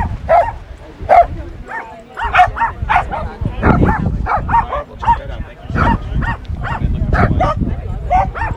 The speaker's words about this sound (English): I went to Essig Park last night, where crowds of people and dogs gathered together for one uncharacteristically windy final summer night with friends and neighbors at the dog park.